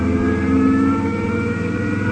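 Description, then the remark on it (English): A car engine revs steadily and loudly, its droning mechanical hum with whining harmonics sustained throughout as the vehicle pulls away, heading straight out to the Burbank Airport, no voices present. “Okay, Chip, let's ride.”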